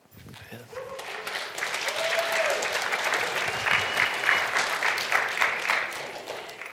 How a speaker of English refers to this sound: Thanks, everybody. That's why I do this. I just love to have you cheer for me, so.